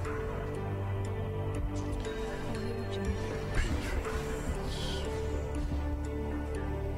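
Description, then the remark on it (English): A countdown clock ticks steadily at a brisk, even pace, layered over a dense, sustained musical drone that holds the same level throughout, with no voices. “Time clock.”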